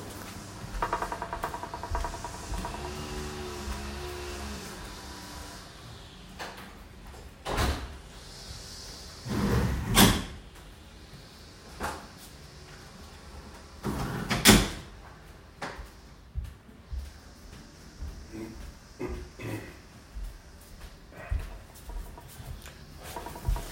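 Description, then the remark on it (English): A front door and windows are shut, with two sharp knocks and thuds standing out among quieter clicks and shuffling, over a low steady background rumble, with no talking. “I'm going to walk over and close my front door and my windows because the gardeners just showed up from across the street and they are very loud today.”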